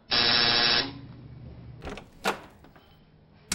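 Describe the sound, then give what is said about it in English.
A door release buzzer, pressed to let someone out, gives one loud, steady electric buzz lasting just under a second, followed by a few sharp clicks and thuds as the door is worked. “Buzz me out?”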